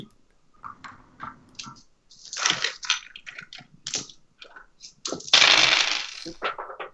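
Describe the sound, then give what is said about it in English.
Several dice clatter and rattle across a hard tabletop in a quick burst of sharp clicks, followed by a louder tumbling skitter as one bounces off and lands on the floor, with no talking. “One dice went overboard, but I've got a 10, another 10, so I've got 2 tens so far.”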